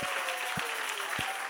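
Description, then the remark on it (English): A church audience claps together in a steady, dense patter, with soft low thumps landing roughly every half second like a beat beneath the clapping. No voices are heard. “Come on, church, why don't everybody clap if you believe the word of God tonight?”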